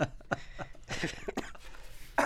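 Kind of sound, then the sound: human body sound, cough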